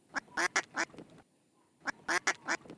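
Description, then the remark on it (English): A duck quacks in two quick bursts of about four loud, nasal quacks each, separated by a short pause, clear with no talking. “what the duck is going on?”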